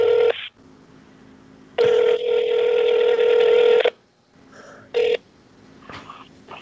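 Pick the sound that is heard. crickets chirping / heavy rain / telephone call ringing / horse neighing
telephone call ringing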